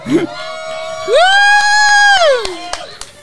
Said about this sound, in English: We got, oh, people eating crazy. Let's give them some fucking encouragement, guys. Let's cheer them on.